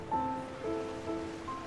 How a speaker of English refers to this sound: The ocean. What I've always wanted.